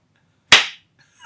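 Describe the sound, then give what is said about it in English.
A single sharp hand clap, crisp and loud, snapping out of silence and ringing off briefly before quiet returns. No one speaks. “How fast can he clap?”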